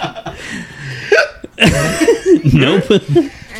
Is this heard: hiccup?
yes